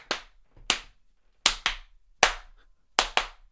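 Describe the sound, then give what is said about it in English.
Sharp, bright hand claps in a song's pre-chorus land in a steady rhythmic pattern, some single and some in quick pairs, with faint low backing underneath and no voices. “And they break down to almost hand claps here on this pre-chorus.”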